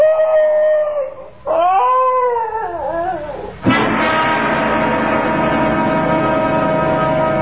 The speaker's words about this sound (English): Now, what's all that? Why, it's the Higley dog. Patsy. Oh, here, Patsy. What's the trouble, doggy?